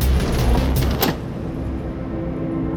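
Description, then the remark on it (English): A single heavy door slams shut with a sharp thud about a second in, over a constant low engine-like rumble that continues afterward. No one speaks. “Close the door and buckle up.”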